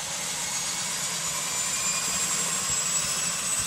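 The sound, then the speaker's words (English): A flying boat's right engine winds up at the dock with a steady roaring rumble and a thin high whine rising over it, fairly loud, continuous throughout with no voices. “Hearing the engines come to life, we'll gaze with amazement out the window as we climb up and on the step.”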